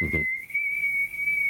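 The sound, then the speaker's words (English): A person whistles one long, steady, high-pitched note that holds level for over a second, clear, after a brief low rumble at the start. “All right, this is the way all the slave them used to communicate. It start from whistling.”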